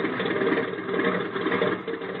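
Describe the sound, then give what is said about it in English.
A steady, droning airplane engine runs continuously at an even loudness, a dense rumbling hum with no breaks, as the plane turns around and taxis. No voices are heard. “Hey, you're turning the plane around. Certainly. Now we taxi.”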